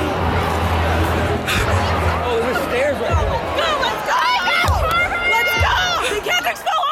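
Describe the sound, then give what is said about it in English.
A dense crowd of protesting students rushing from the bleachers onto the field clamors with overlapping shouts and excited calls, some rallying up their friends, a loud, continuous roar of voices with occasional rising yells and dull thumps underneath. “Nearly 5 or so minutes into the protests, students from the bleachers began rushing onto the field, and I could hear people even rallying up their friends, exclaiming, "Let's go!"”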